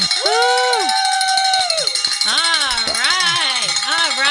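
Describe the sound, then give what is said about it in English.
A bell rings steadily with a bright, high, sustained tone while several voices whoop and cheer loudly over it, celebrating a donor's pledge during a fundraising phone drive. “So what that means is you get to ring the bell.”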